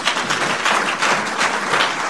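Steady, dense applause from a crowd, many hands clapping at once in a continuous roar that holds fairly loud and even throughout, with no voices standing out.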